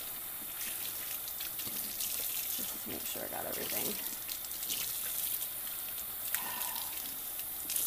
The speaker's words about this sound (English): Rinse them off and throw them back in some clean water.